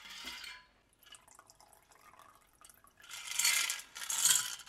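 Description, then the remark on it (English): A cocktail shaker full of ice rattles in loud, bright bursts while a margarita with freshly squeezed lime juice is mixed: a short shake at the start, a quieter stretch, then two vigorous rounds of clattering. “Can you shake him? Shake him.”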